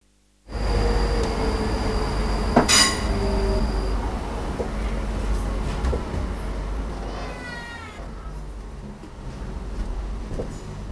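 A steady, heavy low rumble from inside a moving train carriage, with a sharp clank early on, thin high whining tones, and a brief rising squeal near the end. No voices.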